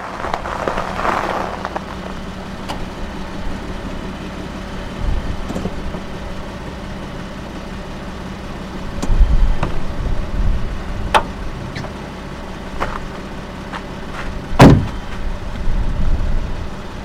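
A car with battered windows approaches, its engine rumbling low and steady, idling under a soft wash of hiss, with a few sharp clicks and thumps breaking through. No one speaks.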